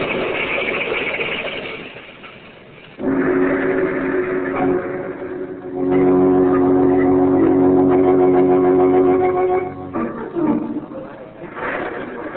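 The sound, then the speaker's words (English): A car speeds along the main highway through a small village on a stormy night, its engine roaring loudly and building into a sustained, droning whine for several seconds before breaking off into the rough, jumbled noise of a crash, with no voices present. “They was coming down the road like grease lightning.”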